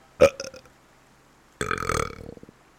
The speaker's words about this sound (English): … finishes his drink, slams it on the counter, and just lets out this huge burp